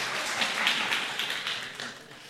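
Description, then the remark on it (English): An audience at a Mother's Day sermon claps steadily, a dense, even patter of many hands at moderate volume with no voices over it, holding level before easing slightly at the end. “I don't know why you were clapping, but...”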